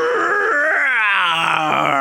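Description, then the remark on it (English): A voice imitates the attacking growl of a Wendigo-looking vampire, werewolf or dog monster from the comic Vampirella, Volume 3, Number 1. It is a loud, strained, groaning roar lasting about two seconds, its pitch sliding and wavering with a raspy, harmonic edge, and no other sounds. “is the onomatopoeia of the week, and also the sound of some Wendigo-looking vampire thing attacking...”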